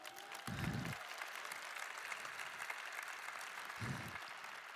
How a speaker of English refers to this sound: There they are. Can we clap it up for my homies?